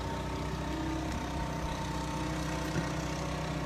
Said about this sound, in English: Perfect timing for a lawnmower to go by. I'm going to wait.